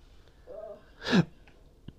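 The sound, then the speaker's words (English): A single sharp hiccup bursts out: a sudden breathy jolt with a squeaky voiced catch, preceded by a soft brief hum and followed by quiet, with no talking. “No, I got the hiccups.”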